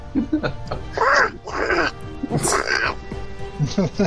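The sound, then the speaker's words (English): A person imitates a duck, letting out a string of drawn-out, nasal quacking sounds, fairly loud, with a few shorter bursts around them. “long duck.”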